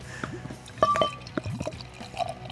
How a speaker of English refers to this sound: Let's pour this stupid beer out. Oh yeah, let's pour it. Let's pour it.